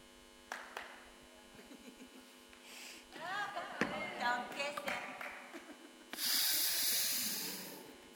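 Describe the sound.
Audible breathing with sniffs and snort-like inhales during a Māori nose-pressing greeting of shared breath, some faint murmured voices mid-way, ending in a long, loud, breathy exhale.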